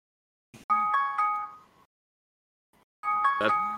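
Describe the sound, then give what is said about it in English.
A phone alarm, used to wake someone up every morning, plays a bright electronic jingle of bell-like tones, stops for about a second, then starts the same melody again. No one speaks over it. “that's your alarm. Is that your alarm?”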